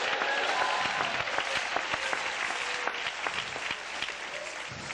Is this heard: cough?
no